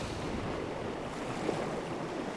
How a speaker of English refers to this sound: We're on a little spit of land, gravelly beach, and a little blustery, windy, dewy, wet.